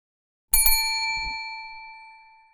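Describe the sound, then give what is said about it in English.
A bell is struck twice in quick succession, then its bright metallic tone rings on and slowly fades over a couple of seconds. It sounds clear, with nothing else around it. “Crowley was wondering how he could manage to leave Liga out of the meeting with the actual Grim Reaper without the other demon knowing it when they heard a bell.”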